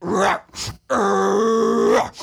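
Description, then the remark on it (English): A voice imitates a zombie's groan from the end of a video game: a short guttural grunt, a brief pause, then one long, loud, sustained moaning growl that trails off, with no other talk. “And then you just see this zombie booking it in at you out of nowhere from the fog.”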